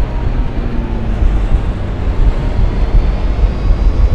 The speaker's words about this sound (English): I'm then going to raise my flaps at 4 meters, well, about 4, and then I'm going to raise my landing gear at about 20, and then you'll see what happens. The plane will speed up.